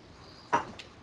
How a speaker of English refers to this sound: Get my chair moved over.